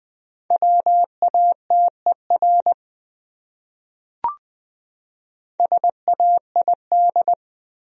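A single word in Morse code at a brisk 20 words per minute: a steady mid-pitched tone keyed into short and long beeps, sent in two bursts separated by a pause with a brief click between.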